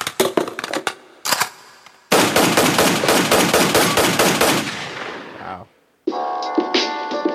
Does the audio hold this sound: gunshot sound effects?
yes